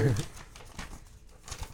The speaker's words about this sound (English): go ahead. Grab a random piece of paper.